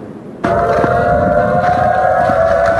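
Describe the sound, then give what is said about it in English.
A tsunami warning siren at a beach, going off early in the morning in the darkness and forcing residents and visitors to evacuate to higher ground, starts abruptly after a brief low rumble and holds a loud, steady, mid-pitched wail with layered harmonic tones until the end. No one speaks. “where those sirens first went off early this morning and forced many residents and visitors to evacuate to higher ground.”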